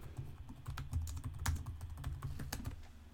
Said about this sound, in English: I don't have a producer today. I'm literally typing this in myself.